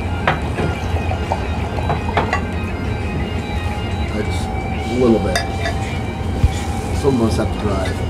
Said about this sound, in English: Fresh pour. Bottle open, first time.